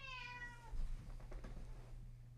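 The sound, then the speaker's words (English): A cat named George lets out one clear meow that slides slightly downward as someone tries to pick her up, followed by soft shuffling and bumping sounds as she runs away, over a steady low background hum. “I was trying to pick up the cat.”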